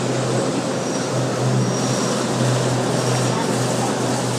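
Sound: fan running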